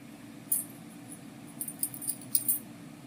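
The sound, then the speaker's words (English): Light metallic clinks and rattles of coins as a child sorts through a pile of coins in a living room to find a quarter while being taught the coins apart, a brief jingle early on followed by a cluster of quick irregular clicks, with no talking over them. “Ashley tried to teach Noah the difference between a pile of coins. Find me a quarter.”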